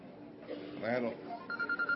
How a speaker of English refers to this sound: He's got a phone call, sorry.